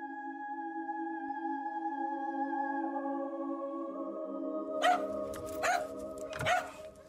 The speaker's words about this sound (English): My dog came down kind of barking at the bedroom door, which is not unusual because he would often come down.